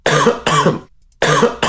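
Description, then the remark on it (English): Harsh, chesty coughing: two loud hacking coughs back to back, a short pause, then two more, sounding rough and congested with no talking. “That's just I'm clearing my throat.”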